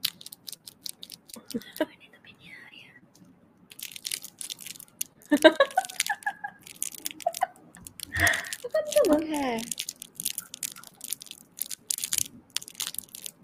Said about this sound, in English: I just realized that this eggplant makes a noise. ASMR time.